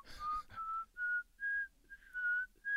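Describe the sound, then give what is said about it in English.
A single person whistles a slow run of about seven short, clear notes, C, D, E, F, G, A, B, each a step higher than the last, with brief pauses between them, imitating the characteristic whistle of the Silbón. Moderately loud. “The Silbón has a characteristic whistle that resembles the musical notes C, D, E, F, G, A, B in that order.”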